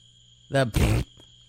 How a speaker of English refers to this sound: This is very relaxing. I know. I like it. I kind of love it. But that, hear that? Those are katydids.